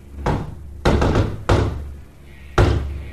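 A secret knock pattern: four firm knocks on wood in an uneven rhythm, two close together, a pause, then two more, each a sharp, resonant thud with no talking.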